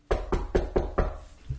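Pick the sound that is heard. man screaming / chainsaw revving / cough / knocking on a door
knocking on a door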